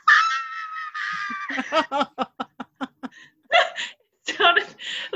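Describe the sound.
A child in the apartment below lets out a loud, high-pitched shriek that holds for over a second, then gives way to a run of quick, choppy bursts like laughter, with a few more voiced outbursts after.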